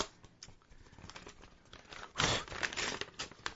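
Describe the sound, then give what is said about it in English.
Crinkling of a small paper envelope, number 3, held next to the microphone, with scattered crackles building into a louder burst of rustling and tearing as it's ripped open. No one speaks. “I'm doing the Howard Stern where I'm crinkling the envelope next to the microphone so you could hear me opening it.”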